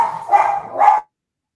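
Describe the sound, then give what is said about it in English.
A dog gives two quick, loud barks in a row, with nothing else audible around them before the sound cuts off. “You see, your dog hates the contract, too.”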